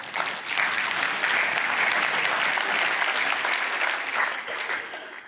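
Steady applause from an audience, a dense wash of many hands clapping at an even, fairly loud level for about five seconds, with no speech over it.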